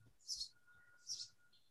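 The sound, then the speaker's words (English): Birds chirping outdoors: two short, high-pitched chirps about a second apart, soft, with a faint thin whistle lingering between them and no talking. “These fucking birds.”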